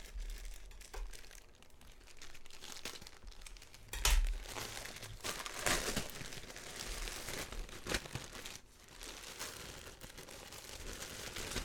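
Plastic packaging crinkles and rustles as a parcel mailed from the UK is torn open, with a sharp tearing burst partway through and continuous crackling handling noise, no voices.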